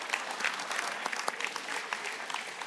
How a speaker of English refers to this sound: oh, we could applaud that, yeah.